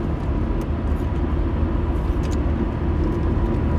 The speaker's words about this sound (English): Oh my god, we're in a truck sandwich. You probably can't hear us at all right now. Truck sandwich, oh my god.